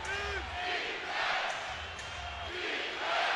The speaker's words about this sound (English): Crowd chanting for defense.